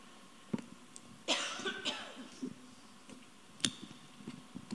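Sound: coughing fit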